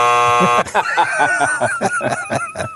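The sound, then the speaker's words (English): A loud, harsh buzzer on the Pat and Stu Show drones steadily for about half a second, then cuts off abruptly as people start talking. “Yeah, buzz that one.”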